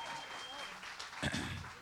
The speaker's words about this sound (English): Give the whole band a big round of applause tonight. Amen.